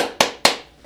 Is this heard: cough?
no